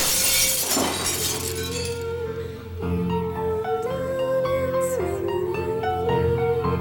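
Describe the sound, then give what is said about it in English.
Glass shatters loudly on the floor, a bright crashing burst lasting about two seconds, followed by sustained tonal music with no voices. “No! The floor! Glass! Don't!”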